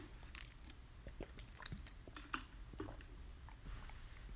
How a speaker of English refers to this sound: Let me take a drink of water real quick.